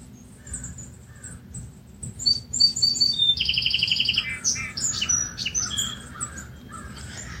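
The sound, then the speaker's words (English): Several birds sing and call outdoors at sunrise by Lake Superior, overlapping chirps, whistles and a quick rattling trill, with a harsh caw or two, all over a steady low rumble of background noise. “How sweet to be welcomed by birdsong.”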